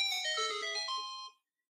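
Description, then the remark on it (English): A short, bright electronic chime, the Zelda secret jingle used as a text message tone, plays a quick rising run of bell-like notes that rings out for about a second, then stops cleanly into silence. No voices are heard. “That's my text message.”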